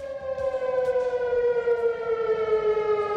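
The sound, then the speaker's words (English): A loud civil defense siren sounds a tornado warning throughout Chicago shortly before a Cubs–Padres game. It blares in one continuous, sustained wail, its steady tone slowly sliding lower in pitch, with no voices present. “Shortly before the game began, sirens started blaring throughout Chicago, sending players running for shelter.”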